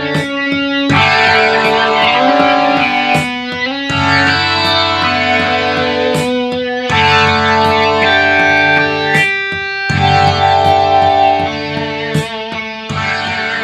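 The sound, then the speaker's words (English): A loud, layered indie rock track with sustained, shimmering guitar chords and fuzzy distortion, rising into full bursts roughly every few seconds with sharp drum hits marking each change. No one speaks. “are back with a … piece of music that I'm going to go ahead and call pretty.”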